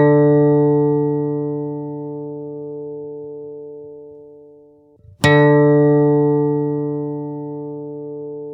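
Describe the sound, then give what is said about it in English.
A single note picked on an acoustic guitar string rings out with a rich stack of overtones and slowly fades. Just past the midpoint the string is plucked again with a sharp attack and sustains once more. No voices. “Your guitar string mainly produces that tone, but you get some overtones in the deal as well.”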